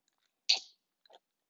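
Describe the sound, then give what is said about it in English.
A single quick, wet sip of fresh-made cranberry juice, followed a moment later by a soft, brief swallowing click. No one speaks. “Let me take a sip of my anti-cough.”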